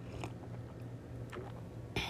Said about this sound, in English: sorry, I'm gonna take a sip of my coffee because I need to wake up.